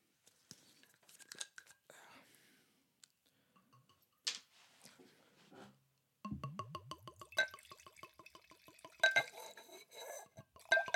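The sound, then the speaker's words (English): The cap of a Belvedere vodka bottle from Poland cracks open with a few sharp clicks and rustles, then vodka glugs rhythmically into a glass, with bright clinks and gurgles continuing until the end. “Probably sounded like a lot more than than I actually poured.”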